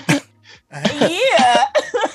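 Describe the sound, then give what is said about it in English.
A person imitates a woman at work coughing openly without covering her mouth: a short harsh burst followed by a drawn-out, voiced hacking cough, loud. “she be talking about this girl at work who cough like that.”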